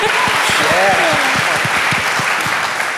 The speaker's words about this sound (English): And I also work on the side with nonprofits with urban development. You can clap.